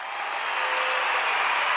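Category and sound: sound effect, applause sound effect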